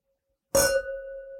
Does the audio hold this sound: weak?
no